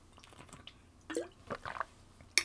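A few short, wet slurping and squishy sounds, like someone taking a sip of a drink, with small liquid clicks in between and no one talking.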